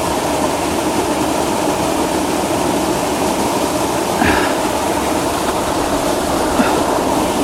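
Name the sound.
waterfall rushing water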